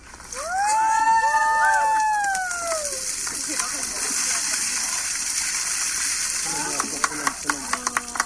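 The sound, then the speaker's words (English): A bucket of partly melted ice water is dumped out over someone in hot weather in India in one loud, rushing gush, met by high shrieks and gasps, then a lingering wet hiss of splashing with a few sharp knocks near the end. “So a lot of the ice has melted, but there's still ice in the bucket.”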